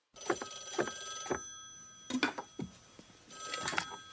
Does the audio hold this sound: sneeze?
no